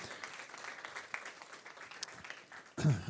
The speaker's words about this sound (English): Let's give Crystal a round of applause.